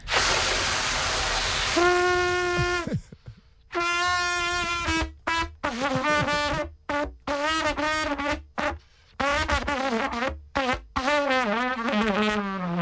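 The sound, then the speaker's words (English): A horn is blown in a string of loud, wavering notes, opening with a breathy blast before steady tones that waver and slide in pitch, broken by short gaps between breaths. “Obviously, that's my first time blowing the horns in a while.”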